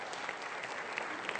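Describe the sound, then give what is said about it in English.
A crowd at a service applauds steadily as teenagers and leaders going to camp come forward to stand at the front of the stage, a dense wash of many hands clapping at once with no pauses and no voices rising above it. “They're going to face me, but give these guys a round of applause as they come up.”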